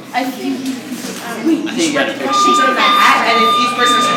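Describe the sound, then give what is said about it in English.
Partway through, a school bell sets in as a steady, unbroken electronic tone at one flat pitch, ringing on to the end over a background of voices. “The sound of the bell ringing means that eighth graders are looking at their teacher saying, "Can we leave now?"”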